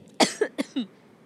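A quick burst of four dry coughs in a rapid run, the first the loudest and broadest, with no speech around them.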